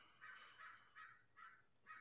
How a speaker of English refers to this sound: A lot of doves over here. And a lot of crows. Yeah, I hear the crow. They scream at you.